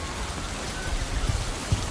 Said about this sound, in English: I see snow only a couple times during the winter. Mostly it's just raining.